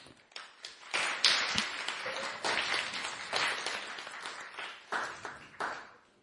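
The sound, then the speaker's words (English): An audience at a Gurukul academy school event breaks into applause for the teachers, a dense, steady wash of many hands clapping that holds for several seconds with small surges before tapering off at the end. No one speaks over it. “So another round of applause for the teachers.”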